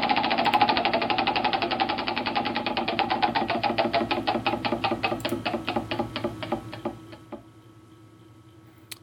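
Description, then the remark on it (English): A prize wheel spins with a rapid run of sharp clicks that gradually slow and spread apart before stopping after about seven seconds, with no talking over it. “Yeah, I'm just going to spin the wheel.”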